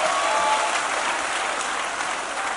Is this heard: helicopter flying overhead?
no